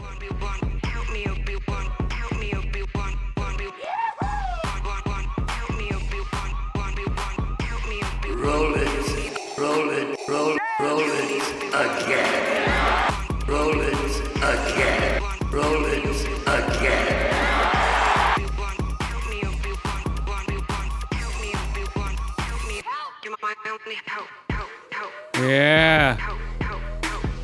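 A dense electronic Star Wars remix track plays loud and continuous, with a pounding beat, layered synths and choppy remix edits, including a couple of brief dropouts near the end.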